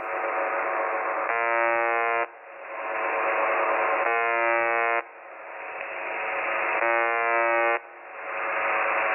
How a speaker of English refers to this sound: So that's weird, right? Yeah. It's like really, it sounds like doomsday-ish. So it's just beeping. Yeah. It's almost like an alarm of some type.